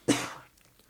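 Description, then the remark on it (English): A single sneeze, fairly loud: one sudden explosive burst of breath that tails off within about half a second, with no talking around it. “Bless you.”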